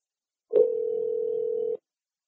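A telephone tone sounds alone as a phone call to Charles Yu is placed: a brief click, then one steady, unbroken hum held for a little over a second before it cuts off abruptly. No separate dialing beeps follow.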